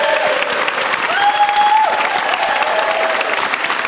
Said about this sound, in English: The crowd is all over there, but I'm going to get them to give us a big round of applause. We wish you all the very best for Movember.